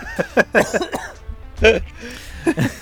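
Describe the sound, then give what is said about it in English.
A man coughs in a series of short, raspy bursts, with a few brief pauses and a stronger cough near the middle. “And I'm coughing.”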